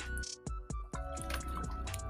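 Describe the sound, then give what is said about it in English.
Gulps of water being swallowed, several wet, throaty swallows in quick succession with faint liquid sloshing, and no talking. “So let me get a swig of this water.”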